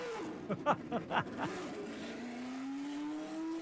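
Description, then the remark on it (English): The engine of Mario Andretti's 78-79 black and gold Lotus race car fires up on the track at Circuit of the Americas in Texas, sputtering and coughing through several sharp revs, then settling into a steady, rising high-pitched whine as it climbs through the revs. “Did you hear that thing spitting and coughing until it came on the cam at, I don't know, what, 8 or 10,000 RPMs?”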